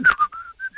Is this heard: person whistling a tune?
yes